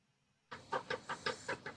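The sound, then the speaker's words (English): A cat lets out a quick run of about six short, chirping calls in an even rhythm, mid-pitched and fairly loud, starting abruptly after a moment of near silence, with no talking. “See? Cat agrees. Shut up, cat.”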